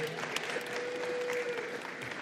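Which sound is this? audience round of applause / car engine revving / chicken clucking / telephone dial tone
audience round of applause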